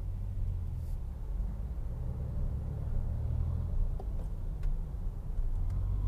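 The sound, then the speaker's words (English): Steady low rumble of a car driving in traffic while merging into another lane, a continuous engine and road drone with a few faint clicks and brief higher tones over it, no talking. “I didn't merge into the other lane fast enough.”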